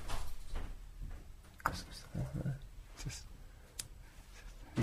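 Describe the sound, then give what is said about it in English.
A door opens or closes with a few sharp clicks and knocks spread over several seconds, while a voice murmurs faintly in the background. “Oh, she's the door.”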